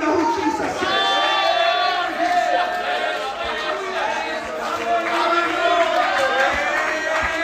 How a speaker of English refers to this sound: You ought to stand on your feet if you know who Jesus is. You ought to give the Lord a shout.